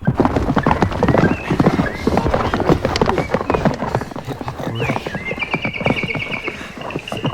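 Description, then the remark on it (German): Steady clip-clop of hooves from horses being ridden into a forest, at a brisk, rhythmic pace, loud, with a brief whinny and faint bird-like chirps in the background. “Als sie weit genug von der Landstraße entfernt waren, kletterten sie auf die Rücken der Pferde und ritten. Von nun an kamen sie wesentlich schneller voran.”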